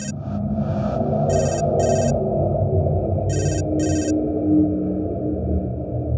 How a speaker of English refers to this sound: The sound of my phone startled me.